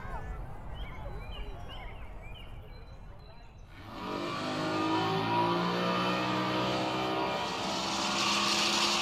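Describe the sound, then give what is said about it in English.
After a few quiet seconds with faint chirps, the engine of Seabiscuit, a mahogany pleasure boat from Italy, roars loud while towing water skiers around Port de Brando, holding a steady, rumbling drone with a slight rise in pitch toward the end. “Taylor McQueen and Melanie Daniels were at the helm of Seabiscuit, a mahogany pleasure boat from Italy, towing Possum and Buster Lee around Port de Brando on water skis.”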